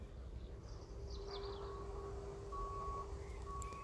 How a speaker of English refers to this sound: You can hear that lorry reversing. That's about 2 miles away.